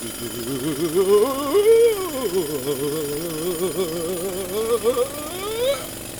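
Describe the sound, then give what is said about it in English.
A power drill boring a hole whines steadily for several seconds, its motor pitch dipping and rising as it bites into material, ending with a climbing whir as it pushes through. “Finish your hole, giant.”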